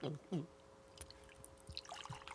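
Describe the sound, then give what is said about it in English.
Liquid is poured slowly through a filter, a faint trickle with scattered soft drips that grows busier toward the end. A brief murmur of voice comes at the start. “Let's pour that through there. Okay. Pour that's through good. That filter.”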